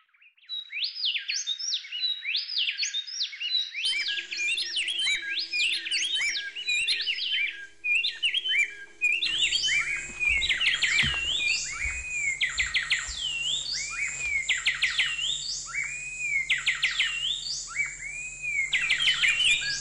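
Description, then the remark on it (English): Two wrens sing an antiphonal duet, trading rapid, bright warbling phrases so closely that the song runs unbroken for about twenty seconds, loud, with a low rumble underneath in the second half. “Wrens, in particular, are known for their duetting.”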